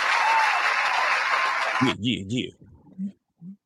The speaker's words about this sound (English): Wait, shout out to moms. Give moms a round of applause.